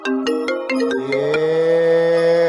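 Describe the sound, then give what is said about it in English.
A mobile phone ringtone, from a phone connected to a computer, plays a bright electronic melody, several quick plucked notes followed by a sustained chord, loud with no talking. “Sorry if you heard my phone ringing.”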